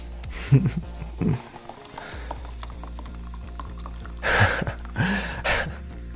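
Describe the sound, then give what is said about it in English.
Cold liquid is poured onto a woman's stomach as she lies on a table, in a few short splashy bursts, two early and brief, two longer near the end, with soft vocal gasps alongside and a steady low hum underneath. “Pour another.”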